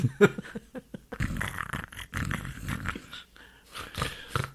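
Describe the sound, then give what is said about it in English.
People imitate snoring, making loud, rasping snorts and growly breaths in quick, overlapping bursts for several seconds, with no clear speech. “We're just going to sit here and snore.”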